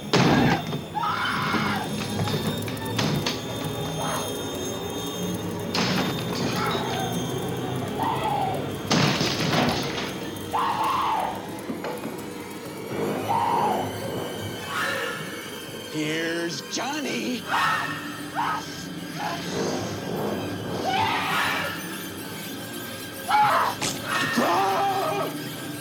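Heavy axe blows crash repeatedly into a wooden door as Jack Nicholson's character breaks it down while attacking Wendy in the film The Shining, each strike a loud splintering thud at uneven intervals, with screams and shouting voices between the impacts.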